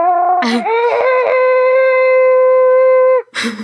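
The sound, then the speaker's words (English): A person imitates an abominable snowman call, one loud, steady, high-pitched wail held for about two and a half seconds, with a short breathy burst before it and another after. “And so yeah, you're going to try to do the call there?”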